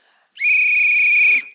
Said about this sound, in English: At least I can blow the whistle.